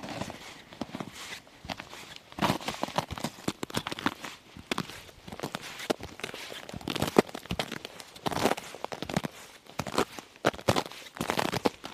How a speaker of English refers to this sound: Crunch of ice crystals. And one of the things that amazes me is how much it just changes from one footstep to the next.